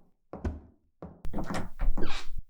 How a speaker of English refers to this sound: That should be the door to the studio.